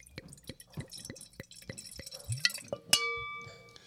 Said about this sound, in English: Nice pour. Oh, yeah.